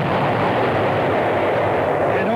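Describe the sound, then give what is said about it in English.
A loud explosion sound effect: a dense, roaring rumble that fills the whole stretch without letting up, heavy, with no voices over it. “It's the overstock explosion.”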